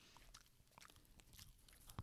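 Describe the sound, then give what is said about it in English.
Crisp crunching as Bunny, a pet, chews popcorn, a steady run of small brittle bites and mouth noises with a louder crunch near the end, no voices. “She likes popcorn. Bunny likes her popcorn. You want to hear her chew?”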